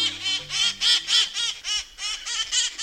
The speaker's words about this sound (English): Troublemakers, clowns, these rowdy crowds of parrots in San Francisco are splashed with maraschino red and pickle green, as bright and cheery as the iconic painted ladies' houses lining Alamo Square. The birds are cherry-headed conures